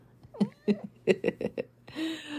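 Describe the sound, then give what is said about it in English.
A pregnant cat gives a quick series of short, chirpy meows, about six in a row, followed by a brief rustling noise. “I do need little pregnant kitties, don't I? Hi. You come to say hello to the podcast?”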